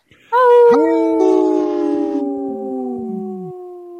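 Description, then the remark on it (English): A person imitates a lone wolf howl, one long sustained tone that rises briefly then slowly glides downward, fading out after about three seconds, fairly loud. “are we howling again? You know it. We got to make these guys howl.”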